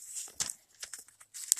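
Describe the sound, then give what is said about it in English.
A page is turned, giving a soft papery rustle with a few crisp, hissy swishes and crinkles over under two seconds, fairly quiet, with no voices. “And forgive me why I'm turning the page here.”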